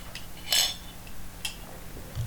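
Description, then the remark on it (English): Glasses clink together in a toast: a bright, ringing chime followed about a second later by a shorter, softer clink, over a quiet background hum with no talking. “Raise up. AKA cheers.”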